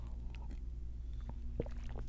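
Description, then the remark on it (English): A few soft sipping and swallowing sounds from someone drinking matcha, short wet mouth noises scattered over a steady low electrical hum, with no talking. “I'm sipping on matcha.”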